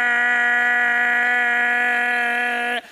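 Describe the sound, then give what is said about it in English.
A voice imitates a car horn being laid on, with one loud, sustained, buzzy nasal blare held steady for nearly three seconds before cutting off abruptly. “I sat there, and I just laid on my horn. Bah!”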